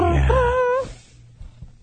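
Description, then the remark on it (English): A voice lets out a short, drawn-out pirate-style growl, a loud harmonic cry with a slightly rising, wavering pitch lasting under a second, followed by near silence. “That was my pirate noise. That was an awful noise.”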